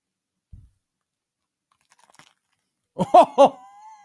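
A close-up, loud bite into crunchy, juicy food, followed by a few quick crunching chews right at the microphone after a mostly quiet stretch with faint clicks.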